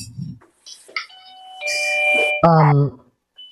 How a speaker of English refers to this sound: somebody who is ringing Tori's doorbell